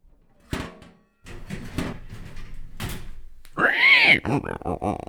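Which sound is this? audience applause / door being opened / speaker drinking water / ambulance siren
door being opened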